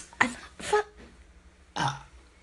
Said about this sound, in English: stop burping like a fucking farmhand.